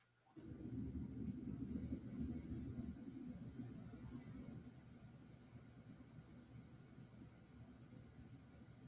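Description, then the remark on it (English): A heavy, low engine rumble starts abruptly and stays loud for several seconds, then eases slightly as a large dump truck continues rumbling, with no talking. “Dump truck!”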